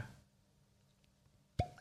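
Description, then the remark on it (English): A single sharp, hollow pop made with the mouth, imitating a cork popping from a whiskey bottle, arriving suddenly and loudly after a stretch of near silence, with a faint trailing ring. “So can I try the cork pop?”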